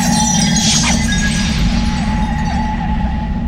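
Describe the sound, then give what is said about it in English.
A glass marble filled with amber fluid, slammed onto rocky ground, shatters in a brief, bright crash near the start, its sparkling debris quickly fading beneath a loud, steady low rumble and faint lingering tones. “I quickly slam the marble upon the rocky grounds and it shatters.”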